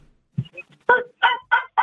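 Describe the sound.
A caller on a phone line imitates a dog barking at the host: a few soft throaty sounds, then four loud, harsh voiced barks in a quick, steady rhythm.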